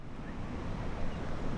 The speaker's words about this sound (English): White water tumbles over the chain of rocks near the northernmost tip of St. Louis. The power of the river is evident here, even though the Mississippi is quite low right now.